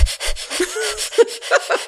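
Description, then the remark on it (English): A person imitates rapid, rabbit-like breathing: quick, airy sniffs and puffs repeated about eight times in under two seconds, steady and fairly loud, with no words spoken. “As opposed to breathing fastly, which would, I guess, be like a rabbit of like...”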